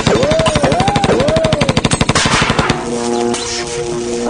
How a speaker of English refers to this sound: Look out, there's someone at the window with a machine gun. Don't everybody duck.